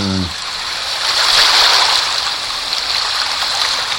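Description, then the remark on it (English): A steady, loud wash of rushing water, like a stream or waterfall, plays continuously from the iPhone app White Noise with bright hiss and little variation. A brief voice fragment is heard at the very start. “And this program makes all different kinds of white noise.”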